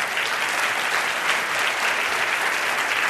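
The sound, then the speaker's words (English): A sustained round of applause from a sizable audience at an Intelligence Squared U.S. debate, welcoming the debate back after a break. Steady, dense clapping fills the whole stretch at a consistent, fairly loud level with no voices standing out. “I have to do one of my welcome backs, so it would be great if you could do a little round of applause.”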